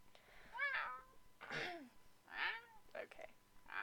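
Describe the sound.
A person imitates a cat, letting out four or five short, rising-and-falling meows in quick succession, with a few breathy sounds between them.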